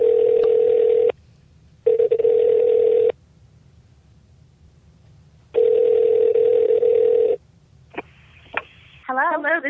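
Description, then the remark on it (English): A telephone call placed by the Blind Living Radio hosts to two guests rings on the line: three long, steady ringback tones with pauses between them, followed by a few sharp line clicks and a warbling sound as the call connects. “Should we get the ladies on the phone? Yes, let's get them on the phone.”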